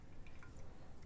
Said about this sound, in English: In a moment. I will pour beer.